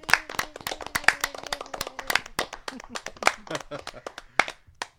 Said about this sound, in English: In fact, I think we all need another round of applause. Come on, let's give ourselves another round of applause.